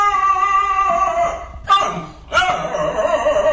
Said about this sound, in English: That almost sounds like somebody doing an impression of a dog howl.